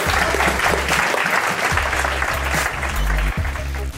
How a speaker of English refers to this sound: Can I just ask you to give one more round of applause